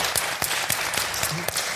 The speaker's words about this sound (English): You give applause, right? You've got to go all the way around.